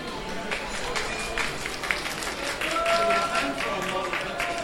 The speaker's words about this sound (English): And a round of applause for the model, but most of the artists here seem very serious in taking the art for real.